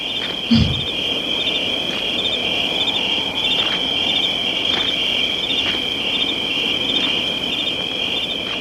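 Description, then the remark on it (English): Crickets chirp in a steady, dense trill that runs without pause throughout, fairly loud, with a brief low thump near the start and no voices. “Those crickets.”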